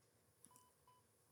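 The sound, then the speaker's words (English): Two short, steady censor bleeps in a mid-high pitch, one after the other with a brief gap, covering a man's spoken age over a quiet background. “He beeped out his age.”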